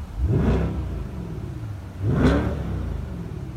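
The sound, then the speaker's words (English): A car engine, switched to sport mode, revs hard twice, each burst rising in pitch before settling back to a loud, throaty idle between them; prominent, with no talking. “And at a flick of a switch here, you switch it over to sport mode, which changes the sound of the engine.”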